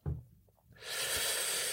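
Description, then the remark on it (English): A soft low thump, then a brief pause before a long, steady rush of breath, airy and sustained until the end, with no talking: a deep breath in and out during a guided breathing exercise. “Voluntary breathing. We think about it, we feel it, and we're heightening up these senses in our body.”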